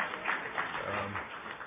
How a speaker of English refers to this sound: She deserves the applause more than I do.